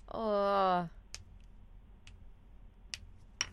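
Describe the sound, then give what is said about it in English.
A brief voiced sound, then four sharp finger clicks spaced irregularly about a second apart, crisp against a quiet background. “Hang on, I'm just clicking my fingers.”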